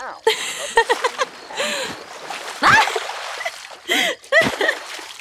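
Bursts of splashing water come in quick, irregular surges, close and fairly loud, mixed with playful shrieks and voices as people splash each other.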